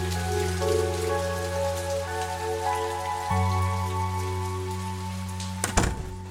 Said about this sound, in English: What in the world were you doing out there? It's been pouring buckets all day.